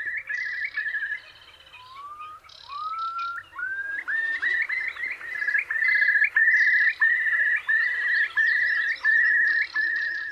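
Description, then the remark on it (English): A curlew calls alone, its rising whistled notes quickening into a long, bubbling series of loud, repeated trills that stay clear throughout. “Well, if you didn't know already, that's the sound of the curlew.”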